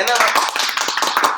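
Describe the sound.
Steady applause from a group for a guest: many overlapping hand claps form a dense, bright patter that holds at an even loudness for the whole short stretch, with some voices mixed in.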